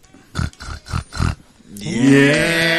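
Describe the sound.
A man imitates a pig on request: four quick, evenly spaced snorting grunts, then a loud, drawn-out squeal that rises in pitch and holds to the end. No talking.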